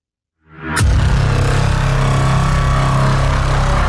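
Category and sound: sound effect, radio static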